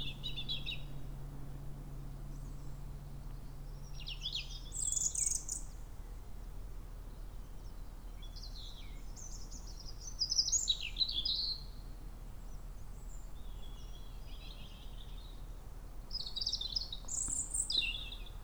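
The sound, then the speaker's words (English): Birds sing outdoors in the morning in scattered bursts of high chirps and trills, several calls overlapping over a soft, steady background hum. No one speaks. “Birds seem to have forgotten to stop singing in mornin'.”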